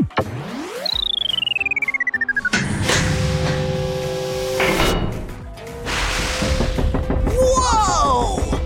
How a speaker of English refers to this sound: Gigantic door!